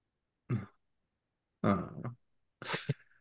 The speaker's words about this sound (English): I didn't hear that. What was that? That was a disappointed grunt. Yeah. I'm sorry. Should I have coughed into the microphone?